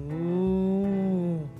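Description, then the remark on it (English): A single drawn-out cow moo, low and steady with a slight rise and fall, held for over a second and heard clearly on its own with no talking. “She huffed and she puffed. And she pushed out the cow.”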